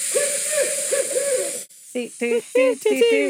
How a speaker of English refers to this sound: Oh, is that the barred owl? Yeah, and I guess this is the mating.